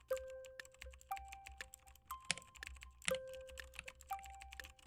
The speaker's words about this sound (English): All right, here we go. ASMR mechanical keyboard.